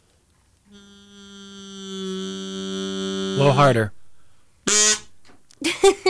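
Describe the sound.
A fart whistle blows one long, steady, buzzy low tone for about three seconds, breaking into a sputtering wobble at the end before a voice speaks briefly.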